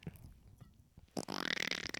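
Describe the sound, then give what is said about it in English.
After a quiet, low murmur, a person blows a loud, sputtering raspberry lasting about a second, a buzzing vocal imitation of a fart. “That just sounds like you. It's like farting.”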